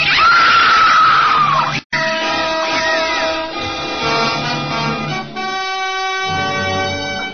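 A woman in an upstairs room lets out a loud, piercing scream that rises and falls, followed by a sharp break and then a dense, sustained wash of tonal sound and noise.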